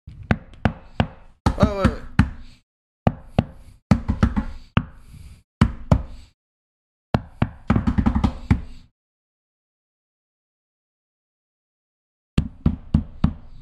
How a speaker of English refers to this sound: is right up to the door and knocks.